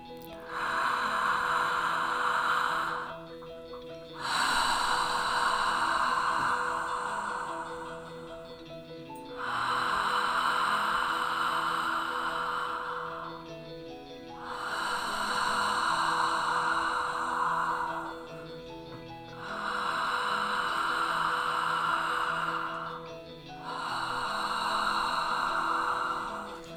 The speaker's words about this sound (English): Each exhale as a release, letting go, being at peace. Inhaling health, clarity, trust. Exhaling what no longer serves you.